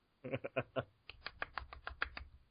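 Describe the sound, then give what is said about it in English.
A golf clap for Le'Veon Bell: a few soft, unhurried handclaps in two short runs, first four quick claps, then a steadier string of about nine light pats, quiet with no talking. “Give him a golf clap, ladies and gentlemen.”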